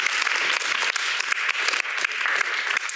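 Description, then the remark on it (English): A crowd applauds Dr. Nicholas, director of the National Portrait Gallery, steadily, many hands clapping in a dense, continuous wash of sound with sharp individual claps popping through, sustained at a fairly loud, even level throughout. “Let's give Dr. Nicholas a round of applause.”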